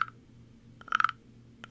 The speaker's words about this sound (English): You know how hard it is to play an instrument like that with numbness in your hands? I can barely play the güiro over here with my frog guy.